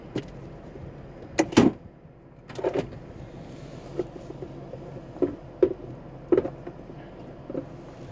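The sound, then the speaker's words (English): Interior car sounds: several thumps and knocks, including one sharp door-like bang, separated by shuffling and rustling as someone settles into the car to drive to work. Nobody talks. “I'm in the car and I'm going to work.”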